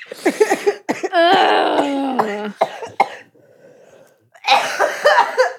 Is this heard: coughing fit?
yes